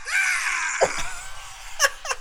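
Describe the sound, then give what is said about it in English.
Politician Howard Dean lets out a long, hoarse, rising yell at a rally that strains at the top, loud, with brief crowd-like noise bursts and clatter around it. “Because the video that came up was called The Scream That Doomed, that doomed Howard Dean.”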